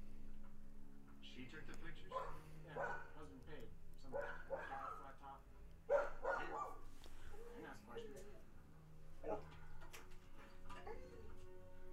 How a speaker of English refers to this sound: Some barky dogs. Some yippy action happening out there.